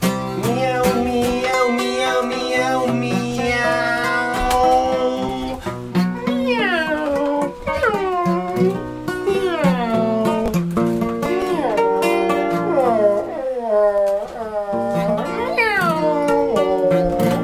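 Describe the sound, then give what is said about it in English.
A human voice imitates a cat as a vocal exercise for exploring tones, letting out a rapid string of meows whose pitch slides downward, the calls loud and overlapping almost continuously for the whole stretch. “Meow meow meow meow meow meow meow meow meow. Descending.”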